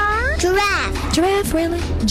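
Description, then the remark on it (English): A person imitates a cat with a quick string of whiny, rising-and-falling meows, fairly loud, filling the short moment. “Dog. Cat.”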